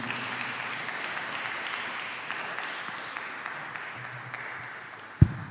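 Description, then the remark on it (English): An audience applauds steadily to welcome student minister Abel Muhammad, a dense wash of many hands clapping that gradually thins out, ending with a sharp low thump near the end. “Let us please welcome our dear brother, student minister, Abel Muhammad, with a round of applause.”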